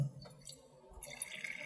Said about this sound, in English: And I'm just pouring a splash in here, so I don't know if our listeners can hear it plopping into the glass.